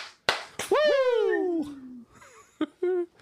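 Two sharp hand claps land in quick succession, then a loud, drawn-out Ric Flair-style 'wooo' shout slides downward in pitch; a third clap and a shorter, fainter 'woo' follow close behind.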